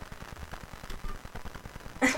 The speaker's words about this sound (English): I hear the typing. I like it.